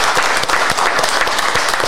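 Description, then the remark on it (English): A round of applause from a group for the managers, dense rapid clapping that stays loud and steady throughout without any voices over it. “Can we get a round of applause for the managers?”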